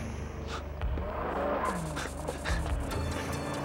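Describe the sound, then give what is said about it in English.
A powerful Ferrari sports car engine roars steadily as the car chases a man on foot, its pitch rising and shifting as it accelerates, with brief bursts of tire noise and no voices. “So much faster than this Ferrari.”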